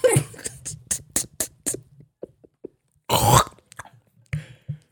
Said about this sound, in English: Man, crunchy ass brush he got. That sound like somebody doing construction work.